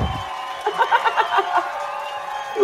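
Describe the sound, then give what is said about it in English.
A brief burst of clapping mixed with cheering from a small group, lasting about a second before fading back to quiet. “Drum rolls and claps.”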